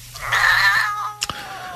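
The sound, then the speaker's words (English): A cat, worked up by another cat, lets out one drawn-out, strained yowl at it lasting about half a second, fairly loud, followed by a couple of sharp knocks; no one speaks. “the other cat got it all worked up and then she screamed at it”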